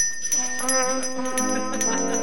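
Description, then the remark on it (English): A woman plays a horn in a video: a short phrase of sustained, brassy notes that shift in pitch, fairly loud, with no voices over it. “That's her playing the horn.”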